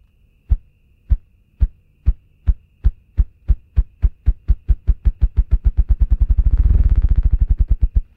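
A ruffed grouse drums with its wings: deep, muffled thumps begin slow and evenly spaced, then speed up steadily into a rapid, blurred whir before trailing off. No voices.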